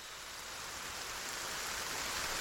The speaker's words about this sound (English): As the rain falls in steady torrents outside,